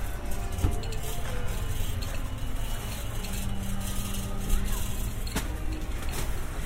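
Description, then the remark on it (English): Someone readying an ice cream van before it opens, at the Horniman Museum in South London, England: soft rustling and a couple of sharp clinks over a steady engine-like hum, with a low drone rising midway through. “That rustling sound just then is the sound of there's an ice cream van, and the person making the ice cream is getting everything ready before they open.”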